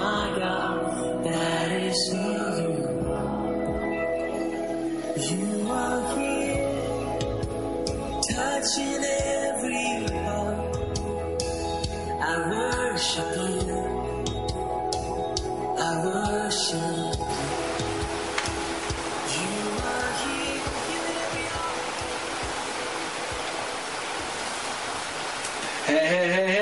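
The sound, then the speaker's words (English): Heavy rain pounds steadily on the roof of the Potter studio in San Diego, California, a dense, continuous rushing hiss that stays loud for the whole stretch, with some fainter tonal sounds murmuring underneath. “because it's just pounding on the top of the roof of my studio”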